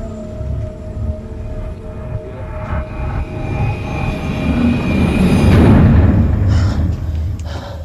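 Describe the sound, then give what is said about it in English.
A TV transition sound effect with airplane noise: a low engine-like roar with steady humming tones swells into a loud whoosh, then thins into airy hisses. “This is what the Flash Sideways sound effect sounded like in LAX.”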